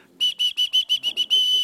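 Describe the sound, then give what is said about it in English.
A loud, shrill whistle blown hard in a rapid series of about seven short sharp blasts, ending in one longer sustained blast, piercing, with no talking. “And if you blow hard, it gets really loud.”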